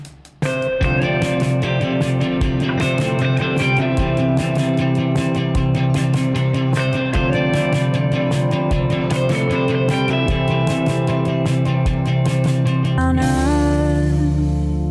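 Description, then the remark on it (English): A singer-songwriter's music track plays loudly and continuously, with a steady, evenly spaced beat under layered sustained tones, ending on a held, ringing chord. “I'm going to pause it there, and I'm actually going to play another track”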